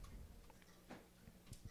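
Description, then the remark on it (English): A clock in a prayer room ticks quietly, a few soft, sharp clicks spaced out over a low background hum, with no one speaking; the clock permanently shows 6 o'clock. “So now it just becomes a ticking piece in my prayer room.”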